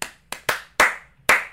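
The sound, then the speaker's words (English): Five sharp hand claps given as a rating, in an uneven rhythm, each a crisp, bright smack that decays quickly, with no voices in between. “giving them 4, 5, I 6, knew 7, this was gonna 7 claps”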